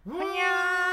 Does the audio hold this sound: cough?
no